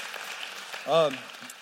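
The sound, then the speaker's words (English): A church audience applauds a couple who serve the church, a steady, dense patter of clapping, with one voice letting out a brief cheer partway through. “So why don't we just give them a round of applause?”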